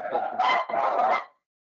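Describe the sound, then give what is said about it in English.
Dogs barking: two loud, harsh barks in quick succession, each drawn out slightly, then silence. No one speaks over them. “I think the dogs may have showed up.”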